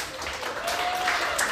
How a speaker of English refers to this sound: Do you know how to read? Clap if you know how to read.